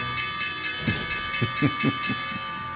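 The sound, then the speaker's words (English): A stock exchange opening bell rings continuously, its steady metallic tones holding throughout, with a few low rumbling bursts of crowd noise rising partway through. “There is the opening bell.”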